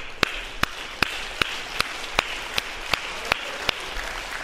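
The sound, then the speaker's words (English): A church audience claps hands in unison during worship, a steady beat of about a dozen sharp, evenly spaced claps rising above a continuous wash of scattered applause and crowd noise. “The Word of God admonishes us to clap our hands 6 times in the Word of God.”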